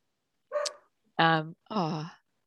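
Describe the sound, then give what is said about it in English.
A dog barks three times in quick succession, each bark loud and drawn out slightly with a tonal, almost yowling edge, separated by short pauses and with no talking. “Your dog. Dog barking.”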